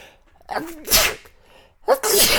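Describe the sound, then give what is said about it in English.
A person sneezes loudly, then a second sharp sneeze follows about a second later, with a brief voiced intake before the first burst. “Bless you.”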